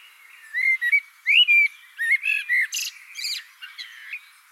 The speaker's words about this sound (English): While listening to birds in my garden, I started to realise that they were copying each other's songs, just like I'd heard in that wood.